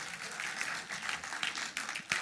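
A crowd applauds steadily, many hands clapping in a dense, continuous patter that swells briefly near the end, moderately loud with no one speaking.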